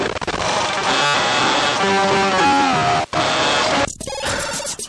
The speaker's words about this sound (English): And if you are into music like that made by today's guest, you know, you might want to get yourself some Recovery Effects because it will help you along your journey in making some really, really cool crunchy noise like this.